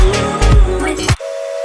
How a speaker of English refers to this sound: Oh, it's the train. Choo choo.